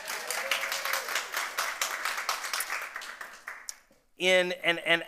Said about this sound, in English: But before we do that, 80 years. Like, how, you can clap for that, that's okay.